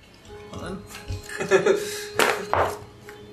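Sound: dice being rolled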